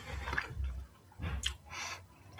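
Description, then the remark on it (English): Soft chewing of smoked salmon, wild hand-caught Chinook (King) salmon, with a few moist, squishy bites in an irregular rhythm, quiet and intimate, with no one talking. “I don't know how I'm going to do this with chewing, but.”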